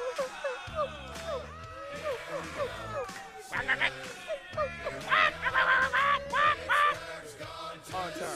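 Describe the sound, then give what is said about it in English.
A voice imitates a duck, quacking rapidly and repeatedly in nasal bursts that grow louder and more crowded partway through, over a steady, thumping low beat, in a Browns-themed song. “That duck gonna come bite the dog. Quack, quack, quack, quack.”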